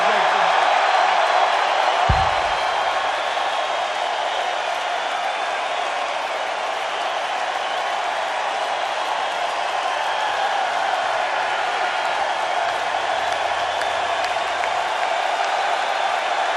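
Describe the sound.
A live audience at a show roars and cheers in a steady, dense wash of noise that holds at a constant loud level throughout, with applause and murmuring voices blended into the din.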